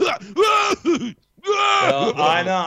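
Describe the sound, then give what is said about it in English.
A voice imitates coughing: a string of loud, strained, throaty hacks with groaning pitch swoops, in two bursts split by a short pause. “And I just hope I sit next to one and I'm just going to cough constantly if they're wearing a mask. I'm going to cough like.”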